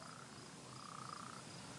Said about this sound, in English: You hear all the frogs.